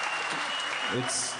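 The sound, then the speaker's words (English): Audience applause at the Balboa theater fills the short clip, a steady dense wash of clapping at moderate loudness, with a faint voice briefly showing through near the end. “I just sit here and I get applause.”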